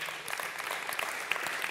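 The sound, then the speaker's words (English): A church audience applauds steadily after the band's morning worship music, many hands clapping at once in a dense, continuous patter with no pauses, at a moderate level throughout. “Yeah, and part of it, you can clap for that.”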